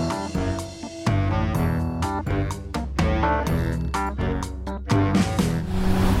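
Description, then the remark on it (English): A car engine revs loudly in repeated surges in a Super Bowl TV ad for Tide, a steady low rumble underneath and sharp bursts throughout, with no voices. “Yeah, just your typical Super Bowl car ad, right?”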